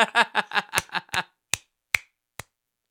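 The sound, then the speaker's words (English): Three sharp, crisp hand claps, spaced unevenly about half a second apart, ring out alone after a short burst of voice; they are fairly loud, each decaying quickly. “Sometimes it's nice to just clap.”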